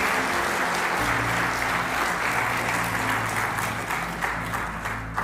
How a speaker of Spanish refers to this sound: ¿Cuánto le dan un fuerte aplauso a nuestro Dios?